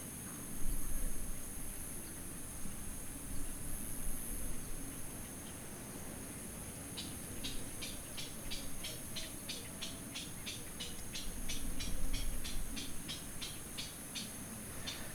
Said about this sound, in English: And crickets.